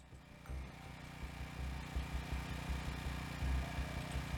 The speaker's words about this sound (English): All right, and then the rest of you are going to hear what sounds like a large lawnmower engine starting. Like three or four riding mowers just starting up.